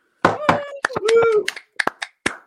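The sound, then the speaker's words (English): A series of sharp, irregular knocks rapping on a door, some in quick pairs, mixed with brief vocal sounds from people. “I learned how to knock from the Mormons and the Jehovah's Witnesses.”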